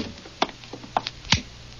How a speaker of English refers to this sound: I'll try the door. Don't knock, it may be open. Okay. Mm. Well, close the door.